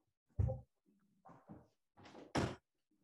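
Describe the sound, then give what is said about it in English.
A door is pushed shut: a heavy thump, then a series of creaks and scrapes, ending in a loud latching clunk. No one speaks. “First of all, I should say that, here, I'm going to close one door.”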